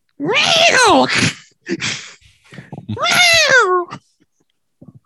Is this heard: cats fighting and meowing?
yes